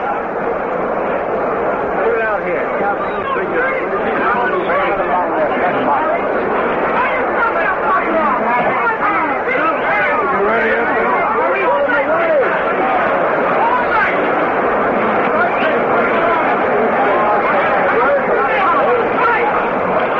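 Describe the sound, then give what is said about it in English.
A large crowd in a boxing arena murmurs and chatters at once, a dense, steady wash of overlapping voices with no single speaker standing out, holding at an even, fairly loud level throughout. “We queued you up to Bill Corum in a bit of a hurry, ladies and gentlemen, as there's quite a crowd in there.”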